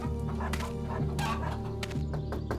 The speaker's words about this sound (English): Something seemed off. The farm animals were restless.